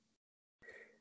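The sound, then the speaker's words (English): After a moment of dead silence, a single loud, sudden sneeze bursts out, sharp at the start and trailing off with a breathy, hissing tail. “I got to sneeze. Hold on.”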